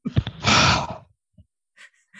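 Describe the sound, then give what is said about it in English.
A loud exhale of heavy breath blows straight into a microphone, with a breathy rush lasting about half a second, followed by a few faint, softer breath noises. “… is breathing very heavily into his microphone.”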